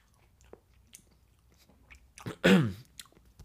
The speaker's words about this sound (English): So I've been munching down these apples. Royal Gala is my preference. Kind of chewy, sorry.